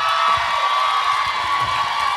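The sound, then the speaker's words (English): An audience claps steadily for a couple of seconds, a dense, even wash of many hands with faint crowd cheering mixed in, holding at a constant loud level throughout. “I was like, why are they clapping?”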